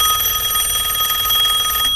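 telephone bell ringing

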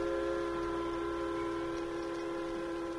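train thundering past

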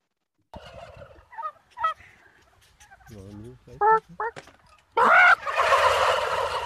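turkey gobbling

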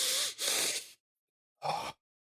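deep breath

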